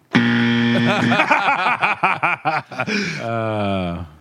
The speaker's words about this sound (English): that buzzer sound after yes.